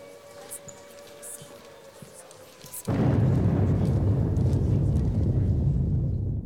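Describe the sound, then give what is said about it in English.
A faint, steady air raid alarm wails in the background, then a huge nuclear explosion suddenly erupts into a loud, deep, sustained rumble that roars on without fading. “All right, so I left in the sound clip there with him walking away because it's a little bit over the top, I think, how you have the air raid alarm and then the nuclear explosion.”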